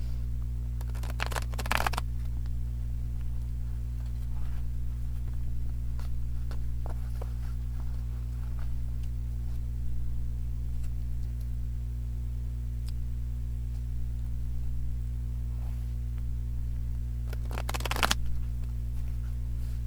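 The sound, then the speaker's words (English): A deck of tarot cards being shuffled, with one card falling out during the shuffle: two short, crisp riffling bursts near the start and end, with faint card handling in between, all over a steady low electrical hum and no talking. “I'm now going to shuffle and ground the cards in energy for the highest good of all, most benevolent outcome for all.”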